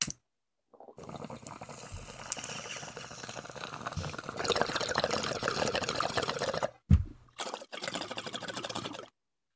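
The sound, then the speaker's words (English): Continuous bubbling of water gurgling through a bong for several seconds during a hit, growing louder midway, briefly pausing with a soft thump, then resuming before stopping. No talking. “Every time I hit that from the bong, it gets better and better.”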